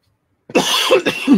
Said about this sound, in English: I'm going to mute myself because I've got a coughing fit coming.